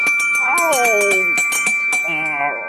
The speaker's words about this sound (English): He lived in the small temple at the end of the village. Every morning at 3:45, he woke up to the sound of the bell rung by the old priest.